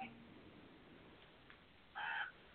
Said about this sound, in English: Oh, it's just a crow. He's annoyed.